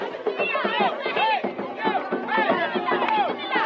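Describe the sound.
A crowd waiting at the house of the mayor of Kusane for a food voucher distribution to begin murmurs and chatters steadily, many overlapping voices forming a dense, continuous hubbub at a fairly even loudness, with a few individual voices rising briefly above the babble.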